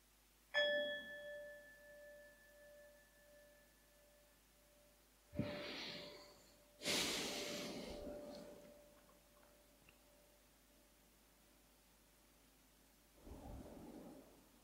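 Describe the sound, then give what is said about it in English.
A gong, rung to end a meditation, is struck once and rings with a long, steady, slowly fading tone, followed later by several louder, noisy rumbling bursts. No one speaks. “I will ring this gong 3 times, then you can come out of the meditation.”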